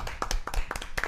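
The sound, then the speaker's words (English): A short burst of hand clapping by someone in the background who has no microphone, around eight sharp claps in a quick, slightly uneven rhythm at moderate loudness, with no one speaking over it. “He don't got a microphone today, so clap it up.”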